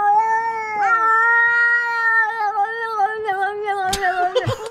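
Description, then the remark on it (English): Two English cats trade long, drawn-out yowling meows that overlap and waver in pitch, loud, with a couple of sharp knocks near the end. “Okay, well, how about these two English cats who are out talking to each other like on a fence post? Are they saying I love you?”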